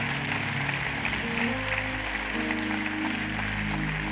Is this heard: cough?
no